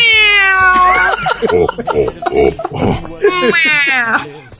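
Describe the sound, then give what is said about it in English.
A cat named Jabba meows loudly, two long drawn-out meows with falling pitch at the start and near the end, separated by a run of shorter, choppy vocal sounds. “The illustrious Jabba says he only likes Deli Cat.”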